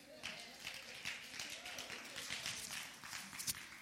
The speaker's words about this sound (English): Everybody stand to your feet. Give the Lord a hand clap.